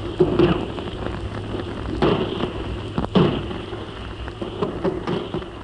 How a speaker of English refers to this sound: In this barrage, we've got our 4.2-inch mortars, our field guns, our medium guns, all the guns of the fleet. The shells are whistling overhead now. Just listen to them.